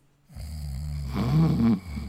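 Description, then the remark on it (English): A single loud snore: a low, rattling rumble that starts abruptly, swells into a harsher peak near the end, then cuts off. No voices are heard. “You snoring.”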